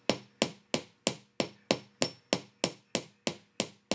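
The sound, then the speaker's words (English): A hammer taps the end of a metal ear wire in a steady, even rhythm, about three strikes per second, each a crisp, ringing tap, with no talking. “hitting just the end of my ear wire”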